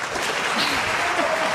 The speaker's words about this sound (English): I think he got more applause than I did.